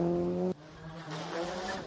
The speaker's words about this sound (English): So this is the Subaru cars. They both sound identical. Yep. Little wastegate shutter.